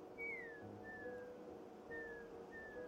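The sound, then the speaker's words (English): A person whistles an imitation of a bird call used as an all's-clear signal: two pairs of short, sliding-down whistled notes, moderately faint against a steady low background hum, with no talking. “Glom makes a bird call sound that him and Gil use as children for all's clear.”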